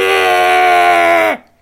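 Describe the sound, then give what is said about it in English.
A voice imitates a heavy metal singer's scream: one loud, buzzy, sustained note held steady for over a second, then cut off with a quick downward slide in pitch. “Yeah, but when he screams, it's like...”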